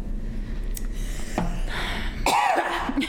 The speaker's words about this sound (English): Now she's coughing.